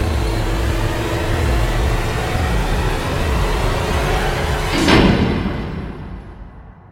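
The door of hotel room 706 swings shut with a single heavy thud near the end, cutting through a steady low rumble of background noise that then fades away into near silence.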